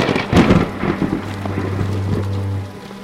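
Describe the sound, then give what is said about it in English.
A loud crack of thunder bursts out during a thunderstorm with lightning, followed by a deep rolling rumble beneath steady heavy rain, with no voices. “Did I happen to mention there was a thunderstorm?”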